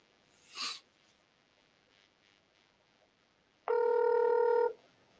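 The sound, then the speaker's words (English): A single steady ring tone on an outgoing phone call, buzzing for about one second, loud, with no talking; a brief noisy burst is heard earlier. “It's ringing.”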